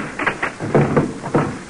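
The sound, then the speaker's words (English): A door is opened: a short series of knocks and rattles from the latch and handle, then a louder scraping swing, fairly clear. “Open the door, please.”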